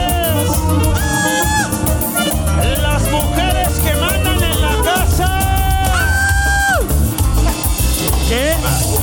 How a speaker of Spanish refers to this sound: Y que empiece el desmadre. ¿Dónde está ese grito de las mujeres?